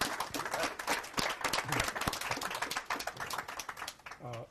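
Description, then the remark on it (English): A crowd applauds the new book Brother Hollis, the Sankofa of a Movement Man, with dense, steady clapping that holds at an even level for several seconds, then thins out at the end as a voice starts to speak. “So let's have an applause for the new book.”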